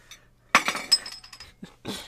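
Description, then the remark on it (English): Coins are rubbed together, clinking in a few sharp, irregular metallic taps, one with a brief high-pitched ring, followed by soft scraping and a last jingle. No one speaks. “I rub these coins together in hopes you sweet Goyim sigil it out.”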